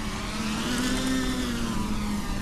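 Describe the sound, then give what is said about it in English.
A steady mechanical buzz of two drones hovering over a field as they go after an enemy drone, with a droning rotor whine that drifts slightly up and down in pitch. It is continuous and fairly loud, with no voices. “They detect the enemy aircraft, which is hovering on the opposite side of the field, and go after it together.”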